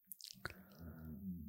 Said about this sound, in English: Is that your stomach? Yeah, did you hear that? Yeah. I felt that. Are you hungry? I am.